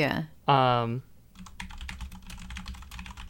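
A brief voiced sound gives way to steady typing on a computer keyboard: quick, irregular key clicks close to the mic, continuing for a couple of seconds at moderate volume.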